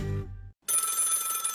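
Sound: old-fashioned telephone bell ringing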